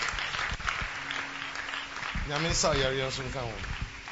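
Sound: audience clapping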